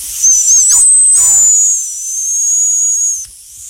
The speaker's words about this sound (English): Here, let me get my dog whistle. Yeah, let's get the dog whistles out. Are we ready? Let's go. Let's see. Let's use some dog whistling.